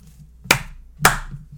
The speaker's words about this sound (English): Well, that's why I clapped. It was pretty good.